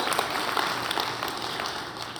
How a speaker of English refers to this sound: He's not sick. Can we just give him a round of applause for that at least?